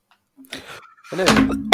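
A single sneeze: a short breathy intake, then a loud, harsh voiced burst lasting about half a second before cutting off abruptly. No talking accompanies it.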